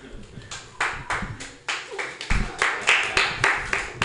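Scattered applause from a small audience at the Joke Workshop comedy show after a comedian's closing joke: sharp, bright claps landing in an uneven rhythm for about four seconds, with a faint murmur of voices underneath.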